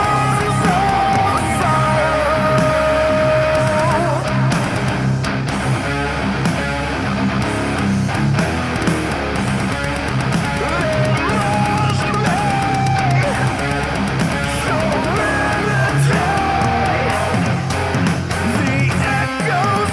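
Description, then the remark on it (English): A loud, dense metal song plays throughout, with harsh screamed vocals by a male vocalist riding over heavy distorted guitars and pounding drums, the wall of sound never letting up. “Also, he can do screams very well too. Not just the singing.”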